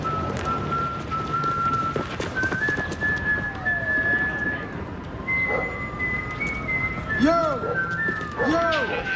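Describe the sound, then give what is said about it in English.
Felix Bautista's whistled walk-up entrance tune: a shrill whistled tune of long held notes and sliding pitches rings out over a loud, continuous crowd roar, with a few arching swoops near the end. “We ready for the wire, the whistle of the wire?”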